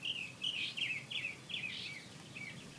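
A single bird sings a rapid, varied string of chirps and whistled phrases, one after another without pause, recorded from a distance in a yard at 3 a.m., clear against a faint background hiss.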